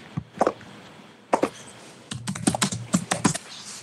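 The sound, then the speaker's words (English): Crisp computer keyboard typing as someone looks up the height of Mount Everest: a few isolated clicks, a pause, then a quicker irregular burst of keystrokes, with no voices. “He's typing it in, folks.”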